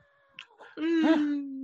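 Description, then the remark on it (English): A person mimics a cat with a drawn-out, nasal meow, loud, rising then sustained, preceded by a couple of brief softer vocal sounds. “Meow, meow, meow!”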